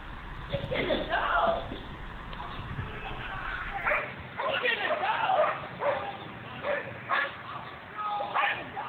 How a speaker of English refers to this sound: the police officers allowed their dogs to kind of to bite him and attack him